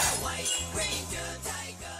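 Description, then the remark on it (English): A loud shattering effect with a glassy, ringing crash that swells in several bursts over about two seconds, layered over sustained tonal hum, as a morpher device shatters in a collision. “They collided and the Master Morpher shattered.”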